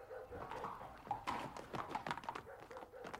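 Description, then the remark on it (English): Horse hooves clip-clop in a steady, uneven rhythm of sharp knocks, fairly quiet, over a faint background murmur, as Grimthorpe goes off taking the horse. “Some distance, or he wouldn't take the horse, my lord.”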